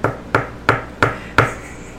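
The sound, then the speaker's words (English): Five sharp knocks on a hard wooden surface land in a steady, even rhythm, each a quick hollow thud that fades fast. No voices are heard. “Is he knocking?”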